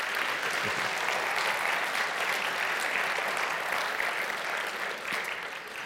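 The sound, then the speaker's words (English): Sustained applause from a large church audience for a speaker, a dense steady clatter of many hands clapping at an even loudness for several seconds, with no voices standing out. “Give Rick a big round of applause.”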